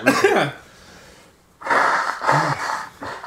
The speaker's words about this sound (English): I just gotta blow my nose.